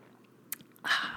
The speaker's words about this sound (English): So I'm going to take a drink of water and you go get your pen and paper because I want you to write these questions down.